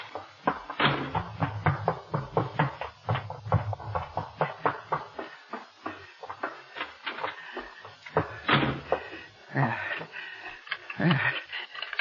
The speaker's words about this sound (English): Safe in my room. Now wait, I must lock the door. Locked and bolted.